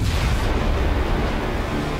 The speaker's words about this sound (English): The Big Bang. The birth.